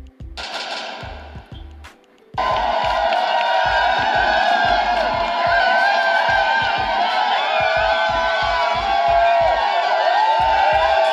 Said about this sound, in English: Yeah, that's what everyone across the world is screaming and partying in the streets, and TMZ did catch it, and that's why I just saw her, let you hear a little bit of that.